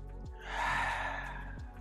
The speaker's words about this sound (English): So how do you breathe? You breathe in your nose and out your nose.